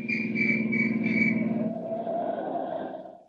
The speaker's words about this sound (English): The road makes a sudden turn, and in the twilight he sees men in uniform barring his way. A police whistle stabs the quiet.